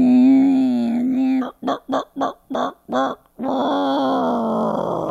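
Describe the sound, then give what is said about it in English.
A person vocally imitates a sad chicken winding down like a toy: a drawn-out, wavering croon breaks into five short rhythmic clucks, then trails off in a long, droning, winding-down groan, fairly loud. “Did you just wind down like a toy? I'm a sad chicken.”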